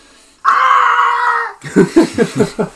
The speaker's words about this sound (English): Ah! Cue Wilhelm scream.